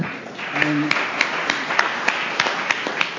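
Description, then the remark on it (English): An audience applauds a speaker who has been sober for 34 years: a short burst of scattered, irregular hand claps over a low murmur, moderately loud and fairly sparse rather than a dense ovation. “And I don't say that so much for the applause or anything else, but just to show that it works.”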